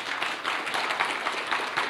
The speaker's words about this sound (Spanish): Amén, hermanos. Amén. Aleluya, de un aplauso al Señor, hermanos.